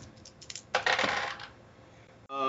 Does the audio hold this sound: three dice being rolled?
yes